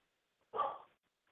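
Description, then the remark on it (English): A female dog, the speaker's own, gives one short, sharp bark, alone against silence, with no one talking. “That's my dog, Buckeye. She's keeping me safe.”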